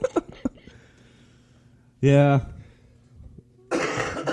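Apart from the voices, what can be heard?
man coughing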